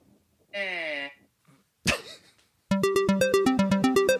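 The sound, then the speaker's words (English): A telephone rings with a rapid, warbling electronic trill, steady and fairly loud for about a second and a half, after a short whining tone and a brief noisy burst. “Remember how we have a phone number? The telephone.”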